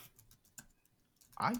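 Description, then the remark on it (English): A quick series of soft, light clicks from keys being typed, tapping in an irregular patter, followed by a brief burst of a voice at the very end. “I hear those keys stuff.”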